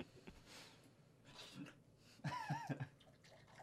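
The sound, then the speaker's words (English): Beer is poured hard into a glass, with a rushing, splashy gurgle that comes in uneven bursts and swells louder toward the end. “Certainly, if you pour it hard, it doesn't give a head at all.”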